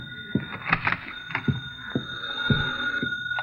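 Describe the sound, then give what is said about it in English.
A conference room telephone in an office rings with a steady, high electronic tone running throughout, mixed with a few soft knocks and rustling bumps. “Oh, there's a conference room phone. Well, I guess it's all right to answer it.”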